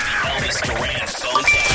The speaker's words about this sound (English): The free money phone tap. Oh, it's a free money phone tap. I guess that means we're giving away money. Oh, no. Who put the free money phone tap sound in there